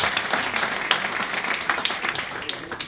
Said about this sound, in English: What comes before the fall? Pride. Give the man a round of applause. Pride.